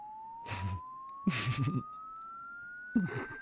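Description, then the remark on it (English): A thin, steady electronic tone from a video glides slowly upward in pitch throughout, sweeping across the range of human hearing, while three brief bursts of voices or laughter break in over it. “Here's a video that runs the gamut of human hearing.”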